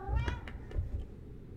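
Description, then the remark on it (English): A cat meows once, a short rising-and-falling cry, followed by a softer, briefer chirp over low background rumble. No one speaks. “Hello, kitty cat.”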